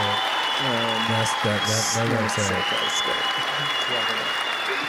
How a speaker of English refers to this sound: That's worthy of a clap.